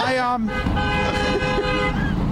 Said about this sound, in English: Talk about the honking horns.